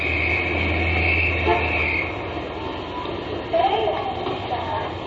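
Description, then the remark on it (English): A dense, steady roar of busy Saturday-night street traffic in the Ginza, Japan, in spring, with a loud sustained horn-like blare for the first two seconds, then a continuing churn of engines and indistinct voices. “This is the way Japanese traffic sounds.”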